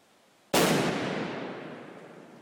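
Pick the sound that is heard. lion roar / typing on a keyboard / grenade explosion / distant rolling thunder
grenade explosion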